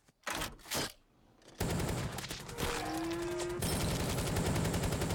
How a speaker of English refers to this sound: Classic, like, machine gun? High caliber, you call that thing.